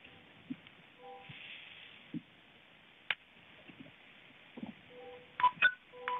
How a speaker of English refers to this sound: Yeah, those are messages coming in. Sounds like that.